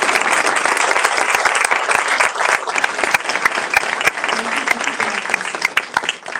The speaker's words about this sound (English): Thank you, Captain, for being here. Can we give them both a round of applause?